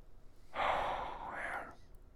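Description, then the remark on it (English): A single sharp, breathy inhalation, drawn in hard by a person trying not to laugh, lasting just over a second with an airy hiss, and no voices around it. “I was breathing in, okay?”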